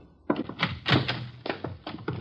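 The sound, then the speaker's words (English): An apartment door down a hall bumps and thuds closed, with a cluster of dull knocks and clunks rattling over about two seconds, moderately loud, with no voices. “Parker coming out of the door down the hall.”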